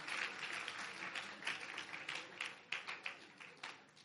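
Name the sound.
audience clapping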